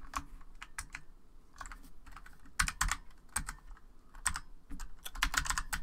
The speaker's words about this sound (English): Come on, buddy. You can handle it. Typing on a keyboard is not that hard.